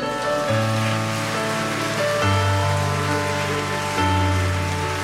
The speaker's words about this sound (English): Church, let's give that applause to the Lord.